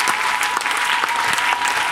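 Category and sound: crowd, audience clapping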